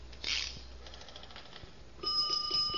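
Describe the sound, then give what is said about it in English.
A metallic clunk as the guard is lifted and the handle pulled, then a fire alarm box bell starts ringing steadily and fairly loud, with rapid repeated strikes over a low background hum. “To send fire alarm, lift guard, then pull handle. Yeah, now a bell goes off in the box, but don't let it scare you.”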